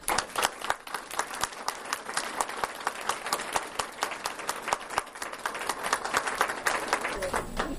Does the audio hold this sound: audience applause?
yes